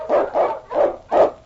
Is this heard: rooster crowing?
no